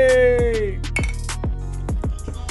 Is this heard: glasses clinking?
yes